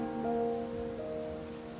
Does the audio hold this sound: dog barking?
no